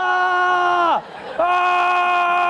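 A person screams in panic while fleeing: a loud, sustained scream held at a high pitch, sliding down and breaking off briefly midway before a second long scream picks up again, steady.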